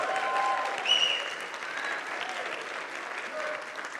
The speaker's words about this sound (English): All y'all clapping like you know I'm good.